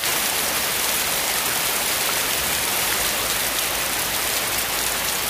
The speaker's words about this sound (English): Okay, well, that's a pour down. You're drenched.